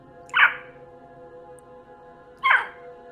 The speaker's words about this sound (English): Perched on a wooden beam above the door is a raven. It hops about and squawks at you, seemingly agitated.